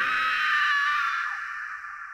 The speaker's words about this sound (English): She noticed a chain attached to one of its deer-like hooves and let out a high-pitched scream.